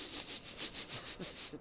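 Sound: voice imitating sniffing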